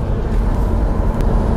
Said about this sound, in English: I am sitting behind the wheel of a Peterbilt right now, driving across Nevada with a load of livestock headed to California.